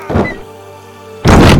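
A heavy wooden door slams shut into its frame with a loud boom, preceded by a softer thump and a brief quiet pause. No voices are present.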